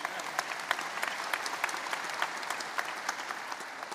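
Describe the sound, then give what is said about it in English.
A steady wash of audience applause for the sound team, many hands clapping at once with sharp individual claps standing out through the dense crackle, sustained at an even level throughout. “Let's give them a special round of applause.”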